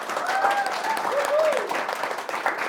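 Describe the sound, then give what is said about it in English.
Sustained audience applause for the players at the end of a live show, a dense steady wash of clapping at full strength throughout, with a faint whistle or cheer rising and falling above the noise. “Let's give a huge round of applause for our players.”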